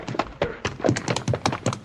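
Horse hooves clip-clop in a quick, steady rhythm, about eight sharp knocks in under two seconds, clear with no voices over them.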